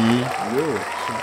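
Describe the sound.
Steady applause fills the whole moment, a dense wash of clapping from a crowd at an awards presentation for RDC World receiving three awards, with a voice calling out over it.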